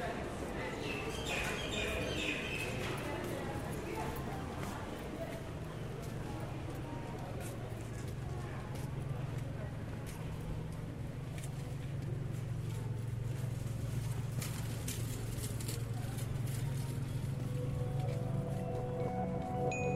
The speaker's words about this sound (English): Foot traffic slowly gives way to vehicle traffic and birds as I exit the market.